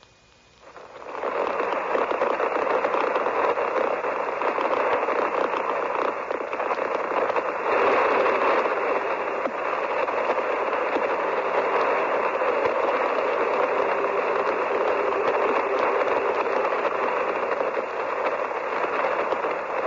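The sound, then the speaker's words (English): Loud, steady shortwave radio static fills the air after a brief quiet start, a continuous crackling hiss as the CBS signal from Algiers carrying Charles Collingwood's report fails, with no voice or signal coming through for the whole stretch. “Either that or technical difficulties are offering too much interference.”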